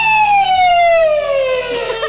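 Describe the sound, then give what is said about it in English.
A voice imitates a shrieking pumpkin with one loud, shrill wail that slides steadily downward in pitch for about a second and a half, then breaks off. “So I get really scared because the shrieking scares me, but I also feel bad for the shrieking pumpkin”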